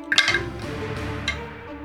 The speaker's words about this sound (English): Some dice to roll.